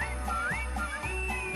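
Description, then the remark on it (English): The droid R2-D2 (Artu) chirps and warbles in short electronic beeps as it is asked to sing, with bright whistling tones sliding up and down in a quick musical phrase. Fairly loud, with no voices. “Just get your circuits buzzing, a mere half dozen will do. If you could get them ringing, then we'd all will be singing with you.”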